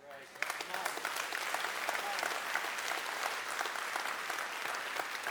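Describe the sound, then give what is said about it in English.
An audience breaks into steady applause, many hands clapping in a dense, crackling wash that holds at an even loudness for several seconds. “But before you clap too much, there is no excuse.”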